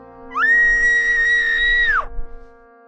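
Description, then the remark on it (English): A single piercing, high-pitched scream echoes down a spaceship corridor, holding steady for nearly two seconds, then cuts off abruptly, set against a constant low mechanical hum and faint rumbling. “As fresh screams pinched the walls of the departing vessel”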